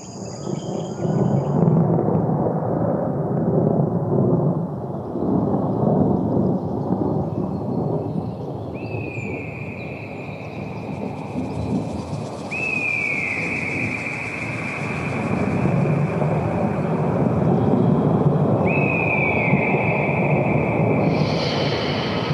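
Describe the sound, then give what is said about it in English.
Deep thunder rumbles on and on with no break, broad and heavy, swelling and fading in slow waves. High insect-like tones chirp in steady lines above the roar. “Let's listen to the message of the Thunder Beings and what they want to tell us.”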